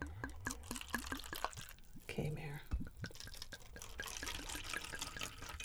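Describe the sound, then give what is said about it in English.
A 2017 Pinot Grigio white wine is poured into a glass still holding a little red wine, a steady splashing gurgle that runs for several seconds, with brief uneven glugs as the flow shifts and faint murmuring in the background. “Probably should have poured the rest of the red out, but so it's a little tinge of pink in there, but who cares?”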